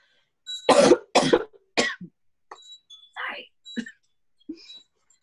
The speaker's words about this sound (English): I have to cough, I'm so sorry.